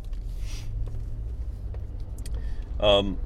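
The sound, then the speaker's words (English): A bus comes fast along the road, its deep engine drone steady, growing slightly louder before a short, high-pitched squeal cuts in near the end. “Whoa, that bus is coming fast.”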